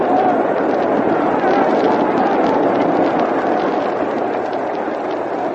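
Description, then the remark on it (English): A baseball crowd at a Yankees-Cardinals game yells and roars after a long foul ball down the right field line, a dense wash of many voices that stays loud and steady throughout, easing only slightly toward the end. “Can you hear that yelling from the crowd?”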